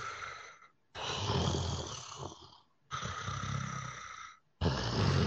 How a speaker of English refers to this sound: You begin to feel like this deep reverberating breathing around you.